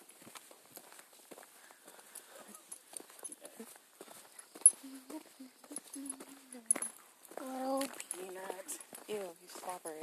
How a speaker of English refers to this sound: He's walking his dog.